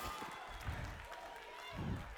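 An audience claps steadily, a dense, continuous crackle of many hands at a moderate level, with a couple of low, muffled vocal swells rising underneath.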